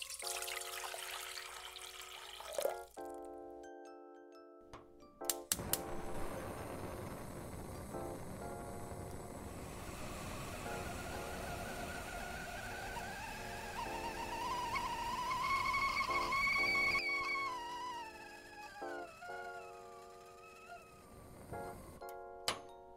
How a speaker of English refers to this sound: Now that your coffee is ready to go, let's boil our water.